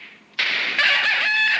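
A rooster crows loudly, a single strained, harmonic call that begins abruptly after a brief, softer lead-in and carries on to the end, heard on its own with no talking.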